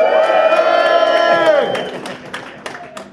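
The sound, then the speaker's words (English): A crowd bursts into loud, staged cheering and shouting on a count of three, many voices whooping together for over a second before it quickly dies down into scattered claps and murmurs. “And when I say go, everyone just go nuts.”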